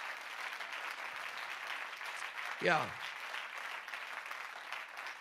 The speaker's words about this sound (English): Clap your hands if you believe that here tonight.